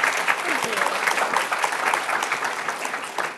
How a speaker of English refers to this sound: Everyone, please give a huge round of applause to Daniela on Valentine's Day.